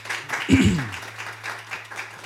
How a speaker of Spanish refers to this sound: Y hoy vamos a tener un tiempo especial para nuestros niños y vamos a dar palmas al Señor por eso, por favor.